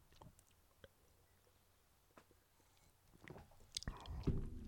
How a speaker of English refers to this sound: Oh my gosh, let's finish this glass of reading wine. There's only a little left anyway. It's like one gulp. I don't mean like a big gulp. I mean just like one dainty sip.